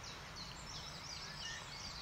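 A soft dawn chorus: several birds trill and chirp at once in a continuous high-pitched tangle over a low, steady rumble, with no one speaking.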